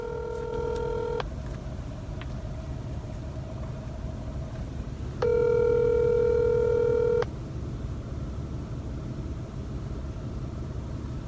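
Telephone tones sound before a call connects: two long, steady electronic beeps several seconds apart, clear, over a constant low rumble like a car engine. No one speaks.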